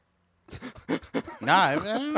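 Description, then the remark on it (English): A dog coughs and hacks while choking on her bone, in a quick run of rough, breathy bursts, then lets out a strained, wavering whine-like sound, fairly loud. “No, it was my dog coughing. She was choking on her bone.”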